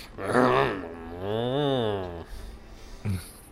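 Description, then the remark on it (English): A voice imitates the character Tarsius snoring: a loud, drawn-out groaning tone that rises and falls in pitch, followed after a pause by a short, snort-like grunt. No other talking. “This is him snoring.”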